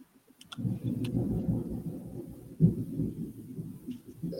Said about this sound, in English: Dang, is it storm outside? Yes. That's lightning going a little crazy.